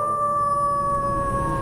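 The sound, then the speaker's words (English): A long, steady wolf howl in a Halloween promo for Hound Radio holds one clear, unwavering pitch, loud, with no voices, just a faint rumble of background noise beneath it. “And speaking of Halloween, for Halloween, Hound Radio is channeling our inner wolf.”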